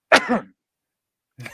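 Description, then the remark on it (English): A single fairly loud cough with a rough, throaty edge, followed by about a second of silence before a quieter sound starts at the very end. “Did my cough? No, I'm good.”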